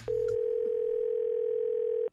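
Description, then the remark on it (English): A steady telephone dial tone before a prank phone call hums at a single mid pitch for about two seconds, loud and unbroken, then cuts off abruptly. No one speaks over it. “He's here with today's prank phone call.”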